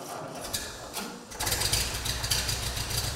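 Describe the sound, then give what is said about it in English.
A vintage tractor engine idles close by. A faint mechanical rattle grows into a steady, rapid chugging that runs evenly to the end, with no voices. “I have a 1942, as best we can tell, Ford 9N or possibly a 2N tractor.”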